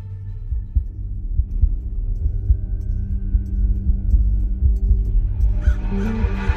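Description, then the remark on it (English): A deep, muffled heartbeat thumps in a steady rhythm over a low droning hum and faint eerie tones, with a breathy hiss swelling in near the end. No one speaks. “In the dark shadows of the Rue Morgue, to the rhythm of the stolen telltale heart, as the black cat swings upon the pendulum, and the cask offers its sherry deep and dry.”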